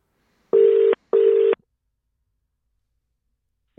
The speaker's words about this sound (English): So let me just get Alana on the phone here.